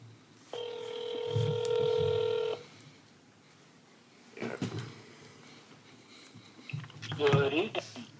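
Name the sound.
phone call ringing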